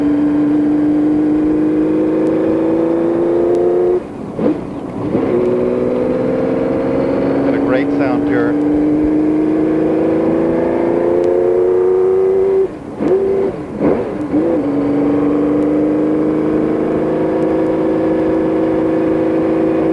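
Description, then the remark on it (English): A Porsche 917 race car engine drones loudly as the car pulls out of pit road with the engine and transmission cold, its pitch climbing steadily as it accelerates, broken by a few sharp gaps and blips where gears shift before the revs build again. “Pulling out of pit road. The engine's ice cold. Transmission's cold.”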